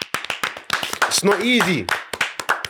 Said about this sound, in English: It's not easy at all. That's a big clap.